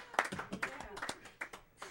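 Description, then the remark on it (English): A small group claps in a studio: a quick, uneven scatter of sharp hand claps over about two seconds, fairly quiet, with murmured voices mixed in. “In studio applause, ladies and gentlemen.”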